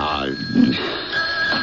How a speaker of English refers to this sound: I thought you took the phone off the hook. I did. Maybe it's the phone company. Don't answer it.